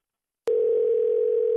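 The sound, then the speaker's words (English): After a moment of silence, the ringing tone of an outgoing phone call starts abruptly and holds as one steady, unbroken electronic hum, fairly loud, with no voices. “All right, don't answer the phone, and we're going to call him back in a minute, okay?”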